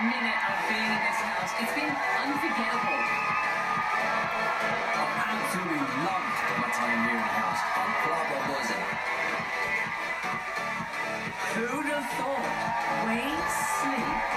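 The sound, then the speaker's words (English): A large crowd in an arena roars continuously, a dense wall of cheering voices with occasional rising whoops cutting through, loud and steady from start to finish. “Can't hear it over the crowd. Is that the real crowd noise?”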